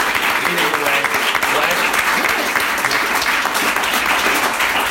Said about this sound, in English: So let's give a round of applause for the first night.